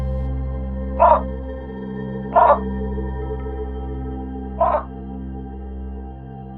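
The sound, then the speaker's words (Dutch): A keeper's recording of one of the last croakings of Taffy the frog: three short, raspy croaks at uneven intervals, each a brief harsh burst, over a steady low droning hum that continues throughout. “En naar hem kunnen luisteren, omdat een verzorger één van Taffy's laatste kwaakjes heeft opgenomen.”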